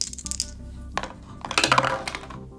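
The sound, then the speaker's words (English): Dice are rolled for a missile attack in a game and rattle and tumble across a hard surface: a few sharp clicks early on, then a quick burst of bright clattering that settles into scattered ticks. No one speaks. “So, rolling for our missile attack.”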